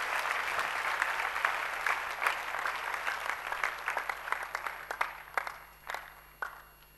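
An audience claps in praise to the Lord, a dense wash of many hands that gradually thins out into scattered, separate claps before fading away. No one speaks over it.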